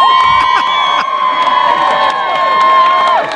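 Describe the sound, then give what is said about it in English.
A crowd cheers loudly and continuously at the release of a sea turtle in Marathon in the Florida Keys on Earth Day, with high excited shouts and whoops layered together and a few scattered claps, holding steady for about three seconds before easing off at the end. “That was the release of a sea turtle down in Marathon.”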